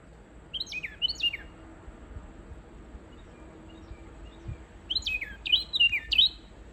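A Carolina wren calling in a backyard in southern Maine, US, in September: a couple of bright, high chirps, a pause, then a quicker run of ringing notes, heard over a steady low background rumble with no talking.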